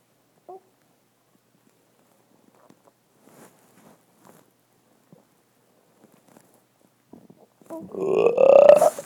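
A baby lets out one loud, drawn-out burp close to the microphone near the end, following several seconds of near-silence broken only by faint soft clicks and rustles.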